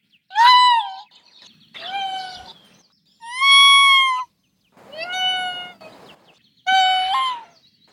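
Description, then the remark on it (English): Five high, drawn-out whining mews from a tanuki, each about half a second to a second long, separated by short pauses, with a thin, harmonic, slightly wavering pitch; fairly loud, with no talking. “they are vocal, and they will whine, whimper, and mew.”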